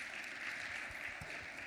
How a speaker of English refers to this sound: So I mentioned earlier that with my, yeah, clap it up.